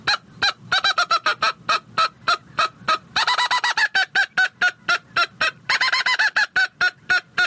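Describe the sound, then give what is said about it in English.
A mouth-operated game call imitates the mad bark a squirrel gives when angry or agitated: a long run of sharp, nasal, honking barks, some evenly spaced and some in quick bursts, loud with no talking. “That last series was more of a mad bark that a squirrel will do.”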